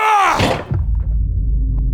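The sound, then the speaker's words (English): A refrigerator door swings open with a brief squeaky creak and a dull thunk, followed by a steady low hum that continues to the end. “So I opened up the fridge and jumped to the side, shielding myself with the door.”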